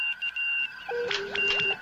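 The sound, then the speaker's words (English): Electronic beeps of the old Morse code CQ call signal, picked up as a signal in a science-fiction drama scene: a high steady tone cutting on and off, joined by a lower sustained tone and a few rising chirps, all fairly faint with no voices. “Captain, that's the old Morse code call signal.”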